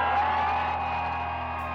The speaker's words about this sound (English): Then let's hear a little cheer for parent power!